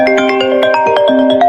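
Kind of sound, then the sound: signal or alarm, incoming call ringtone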